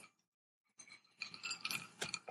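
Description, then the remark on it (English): Glasses of Crown Honey with Simply Lemonade on the rocks clink together in a toast: a quick run of bright, ringing taps and knocks with a faint scrape, after a brief silence, and no one talking. “But it's Crown Honey with Simply Lemonade. On the rocks. It's good. Cheers. Cheers. Oh, cheers.”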